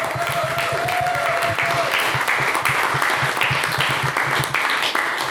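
A crowd applauds steadily, dense overlapping claps filling the space at a loud, even level for several seconds, with a brief whistle rising above the clapping early on.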